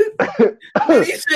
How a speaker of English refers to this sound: He said, cough.